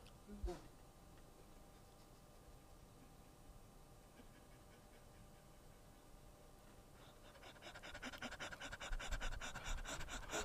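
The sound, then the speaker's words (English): A person pants like a dog, with quick rhythmic breathy huffs that start low and grow louder and faster near the end. “First things first, you are a human, not a dog. Stop that.”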